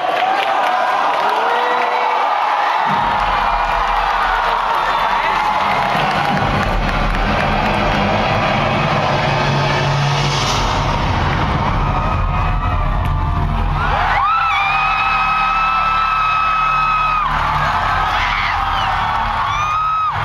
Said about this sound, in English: And all the people screaming. Yeah. They first saw the Man of Steel logo hit the screen. Yeah. And then the light came behind it and turned up. And you saw the silhouette of the Batman logo.